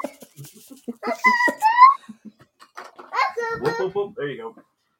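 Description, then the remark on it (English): A dog vocalizes in a 'talking' way, with two bouts of warbling, whiny yowls that rise and fall in pitch, separated by a short pause. “You do your thing, dog.”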